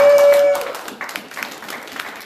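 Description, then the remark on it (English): A church audience claps together for the church's leaders in a dense, steady patter of many hands for a couple of seconds, the applause holding fairly even before thinning slightly toward the end. “We can definitely clap for them.”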